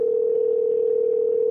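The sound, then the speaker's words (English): A steady, unbroken ringing tone of an outgoing call to a real phone number hums through a handset line for the full moment, moderately loud and even, with no voices or other sounds. “Calling him on a real phone number, right?”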